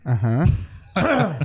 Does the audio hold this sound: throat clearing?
yes